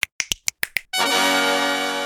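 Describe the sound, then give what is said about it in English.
Six crisp finger snaps in a quick, slightly uneven rhythm, followed immediately by a loud, sustained bright musical chord that rings on steadily. No one speaks. “Time for 10 new snaps.”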